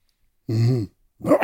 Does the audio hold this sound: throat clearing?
yes